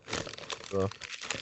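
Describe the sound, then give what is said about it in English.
A plastic bag of Smartfood popcorn crinkles and crackles steadily as a hand reaches in to grab some, with a brief voiced sound cutting in partway through. “Are you hearing my popcorn bag?”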